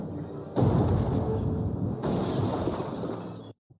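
Two loud, booming movie-style gunshots about a second and a half apart, each trailing into a long crackling, rumbling tail before the sound cuts off abruptly.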